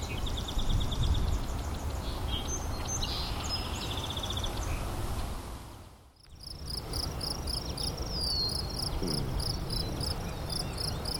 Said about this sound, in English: Nice to hear crickets. You look, it's been a long time since I've heard crickets.